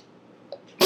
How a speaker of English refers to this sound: Bless you. Thank you.